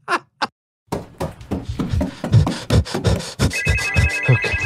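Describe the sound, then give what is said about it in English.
A phone's electronic notification ringtone rings out with steady, sustained tones in the last second or so, layered over a busy jumble of clattering, rhythmic sounds that start after two brief bursts. “Are you trying to run away from the notifications and the responsibilities on your plate like I am?”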